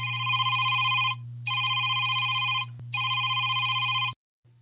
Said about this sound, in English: Well, now we all know what we're supposed to do when the phone is out and it rings, or maybe it shouldn't be out so that it can't ring and you can pay attention to your conversation partner.